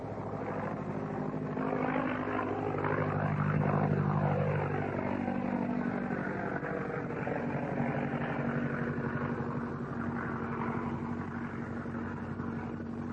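A vintage biplane's 90-horsepower OX-5 engine roars steadily and loudly at full bore, its throbbing propeller drone sweeping past with a rising and falling pitch as the aircraft flies across a field at about 65 to 70 miles an hour, with no voices present.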